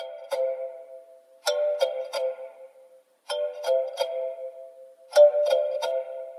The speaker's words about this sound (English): And just for reference, here is the kalimba sound on its own, which plays in the background of this weird part.